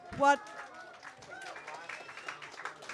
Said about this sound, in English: And thank you all. A big applause to every one of you.